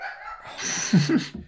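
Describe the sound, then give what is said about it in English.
A dog barks twice in quick succession, short yappy barks, over a faint hiss of background noise. “shut up, dog.”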